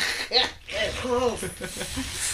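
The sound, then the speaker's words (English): A person hisses like a snake, drawing out sharp sibilant sounds through a short, voiced, word-like utterance. It is moderately loud, with a rising and falling tone. “Sounds like something a snake gets.”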